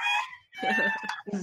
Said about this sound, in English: Is that the chicken in Minecraft or is it? No, that's an actual chicken. Oh, that's an actual chicken.